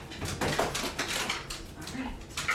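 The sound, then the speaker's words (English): An excited female dog whimpers and whines in short, uneven bursts, with rustling movement and indistinct voices mixed in throughout. “If I just let her up, then she'll stop doing that.”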